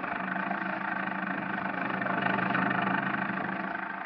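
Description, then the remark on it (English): A small car engine drones steadily as the car lurches and bounces along a muddy highway during a thunderstorm, a continuous mid-pitched hum that swells slightly midway before settling, with no voices. “The little car lurches and bounces in its fight to keep the center of the highway.”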